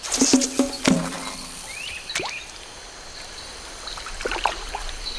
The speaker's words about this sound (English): This feat of marksmanship is even more impressive than it looks. Archerfish can actively control everything about their jets. Speed, angle, height, and force.